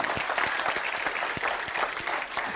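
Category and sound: crowd, audience clapping hands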